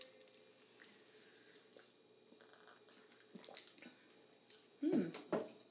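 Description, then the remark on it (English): Wet sipping from a glass of berry cocktail made with triple berry bubbly, gin, simple syrup and blackberry lemonade: a few soft slurps and small liquid sounds over a quiet background, ending with two louder, brief sips near the end. “as I sip on this refreshing cocktail.”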